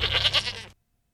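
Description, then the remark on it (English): A single Nigerian dwarf goat bleat, loud, with a quavering, wavering tone that lasts under a second and cuts off abruptly into silence. No one speaks. “All right, well, I mean, we've been talking about animals, the Nigerian dwarf goats.”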